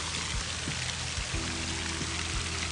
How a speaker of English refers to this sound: This water right here coming down from the mountain is very cold.